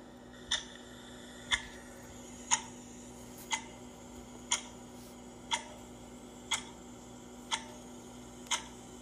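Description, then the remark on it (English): A clock ticks steadily, about once per second, with sharp, crisp clicks standing out clearly over a faint, constant low hum. No one speaks. “Let the clock begin.”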